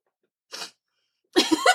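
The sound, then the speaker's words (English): A single sneeze: a brief sharp intake of breath, a short pause, then a loud explosive burst. No one speaks. “Bless you.”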